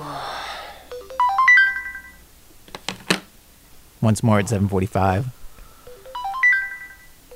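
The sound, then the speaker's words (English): A wake-up alarm rings in a bright, repeating melodic chime pattern at the start and again near the end, with a brief spoken phrase and clicks in between. It is a grad student's alarm at 7:30 on a Monday morning during finals week in Springfield, Oregon, and he shuts it off. “hears the alarm that's supposed to wake him up, and he shuts it off.”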